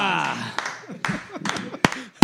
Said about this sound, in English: Clapping ourselves. We had to.